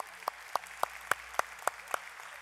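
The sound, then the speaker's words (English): An audience claps in steady unison for the speaker having stopped drinking Coke, seven crisp evenly spaced claps at a brisk rhythm over a soft background hiss, with no one talking. “This is only the second time that anyone has ever clapped for me for not drinking Coke.”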